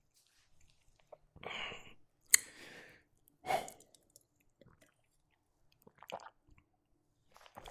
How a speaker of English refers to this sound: I had to get my sip on. This glass, courtesy of a friend, it says, "Own your awesome."